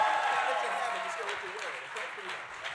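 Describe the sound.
An audience claps steadily for a few seconds for a boy being given a USC Rose Bowl championship jersey, a dense crackle of many hands that holds fairly loud and eases off slightly, with some voices calling out underneath early on.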